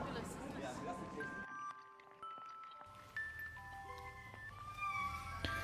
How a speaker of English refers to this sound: That's the ice cream man.